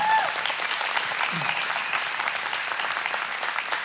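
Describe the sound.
An audience applauds steadily, dense clapping filling the room at a constant level for the whole stretch, with a faint voice briefly audible beneath.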